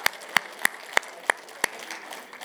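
An audience at a Resurrection Day (Easter) church service claps in a steady rhythm to praise the Lord: six sharp, evenly spaced claps over a soft wash of crowd noise, with no distinct cheering standing out.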